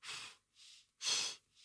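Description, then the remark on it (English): Slow, deliberate breathing: two louder, airy exhales out through the mouth alternate with softer, shorter inhales in through the nose, a steady rhythm of four breaths with no talking. “You know, out through your mouth, in through your nose, something that not naturally should come subconsciously.”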